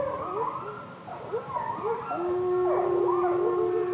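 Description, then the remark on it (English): A wolf pack on Isle Royale, a remote island in the Great Lakes, howls together in a chorus, long overlapping wails rising and falling in pitch, one steady drawn-out howl holding beneath the others. “The man who recorded the wolf packs on Isle Royale wishes he could hear that sound again.”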